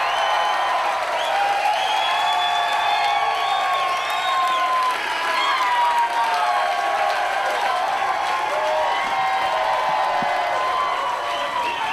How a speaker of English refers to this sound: Just when the applause starts to come down. Yeah. Oh. He even waited a minute before he came out.